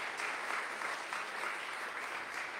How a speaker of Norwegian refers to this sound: Vi klapper for deg. Woo!